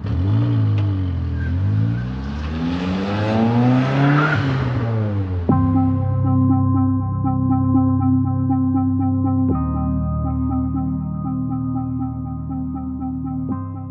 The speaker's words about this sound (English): so Christopher fled away in his car